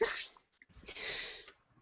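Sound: dog reacting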